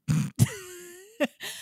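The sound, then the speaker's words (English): A sneeze: a short, breathy intake and sharp explosive burst, followed by a drawn-out voiced sound that slides in pitch, then two brief breathy bursts. No talking. “Bless you. I'm so sorry.”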